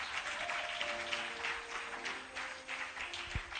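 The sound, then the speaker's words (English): An audience claps their hands together in a dense, steady wash of clapping that runs the whole time, with faint sustained tones humming softly underneath. “Oh, clap these hands, clap these hands.”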